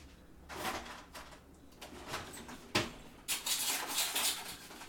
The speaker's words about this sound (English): She's rooting around in the junk drawer.